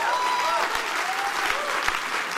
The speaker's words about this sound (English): Come on, if you believe that, give Him a clap of praise.